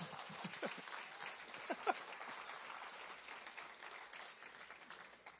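A group of people applauding steadily, a dense patter of many hands with a few sharper claps standing out early on, fading slightly toward the end.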